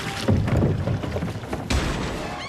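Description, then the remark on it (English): A loud, heavy crash as a boat in a film scene shoots straight up into the air, a fairly practical effect, followed by booming thuds and a second big splash as two people are thrown into the water, forceful with no talking. “So it's at this point in the film that the boat just shoots straight up in the air, and both Hank and Kelly get thrown right into the water.”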